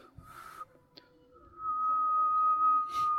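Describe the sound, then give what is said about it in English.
A person whistles a steady, sustained note, holding a single clear tone for over a second after a few softer breathy attempts, with faint background noise and no talking. “Okay, I'm going to try to whistle.”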